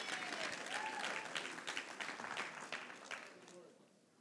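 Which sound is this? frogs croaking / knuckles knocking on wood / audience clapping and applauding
audience clapping and applauding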